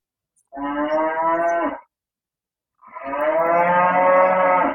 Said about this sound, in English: And what we learned during our interview is his home in Hawaii, well, there are cows next door.